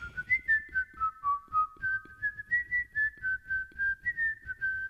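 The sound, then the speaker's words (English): A person whistles a melody, clear pure notes stepping up and down in a steady tune, with no talking around it, whistling a song for a Guess That Song whistling game. “I'll whistle a song, and you guess what it is.”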